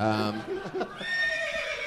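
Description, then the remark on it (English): A loud horse whinny rings out, starting high and strong, then wavering and trailing off in a shaky, descending neigh over about two seconds. “Where's the horse of truth?”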